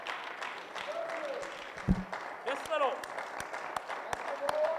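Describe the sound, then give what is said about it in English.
Sparse, scattered claps from an audience, a handful of hands clapping irregularly, with murmuring voices and a few vocal exclamations underneath. “I've seen more clapping at a golf game, amen.”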